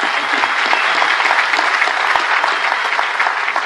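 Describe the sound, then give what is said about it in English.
Loud, sustained applause from a crowd, a dense steady patter of many hands clapping at once with no pauses, filling the whole stretch at an even level. “And I just want to give you a huge round of applause.”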